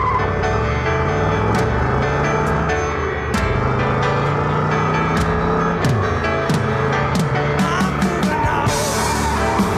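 A car engine revs and drones beneath dense rock music, its pitch sliding up and down while drums and guitars keep playing loudly around it.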